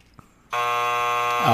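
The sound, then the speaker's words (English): A harsh, loud wrong-answer buzzer blares suddenly after a brief quiet moment in a spelling game, holding a steady rasping tone for about a second. “I'll do a finger, and that means buzzer.”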